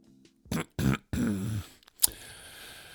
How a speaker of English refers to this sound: just clearing his throat one time real quick